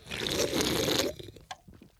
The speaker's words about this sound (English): But then I gave it like two or three more drinks and a slurp. And I think this is pretty good. I'm not going to lie. The slurping makes it taste better. It aerates it.